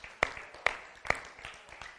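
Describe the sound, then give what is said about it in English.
An audience claps together in a steady rhythm, with three sharp, loud unison claps roughly half a second apart over a bed of softer, scattered clapping. “Let's give him one more hand clap.”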